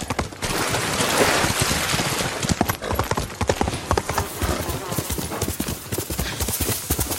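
Horse hooves clatter in a fast, steady clip-clop that grows sharper and more distinct after the first couple of seconds, over a loud, breathy rushing noise, with possible snorts from the horse.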